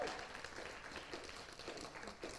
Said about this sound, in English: We had 8 children give their lives to Jesus this last year. If we're going to do a bit of clapping, perhaps it should be at that point.